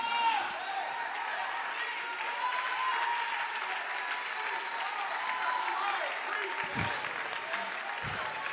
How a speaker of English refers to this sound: Now with everything in you, clap with everything in you.